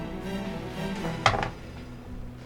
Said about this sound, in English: So yeah, I'll roll some D8 plus ones.